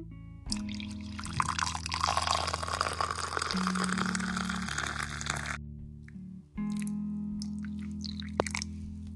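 Hot water pours steadily into a mug of instant coffee and sugar for about five seconds, a continuous splashing rush with a rising tone, then stops. A second, softer stretch of liquid sound follows with light drips.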